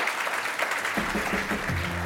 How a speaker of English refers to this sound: Let's give a round of applause to getting through the gauntlet here.